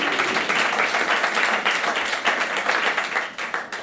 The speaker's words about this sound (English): Wasn't such a beautiful music service? Amen. Amen. A round of applause for our musicians.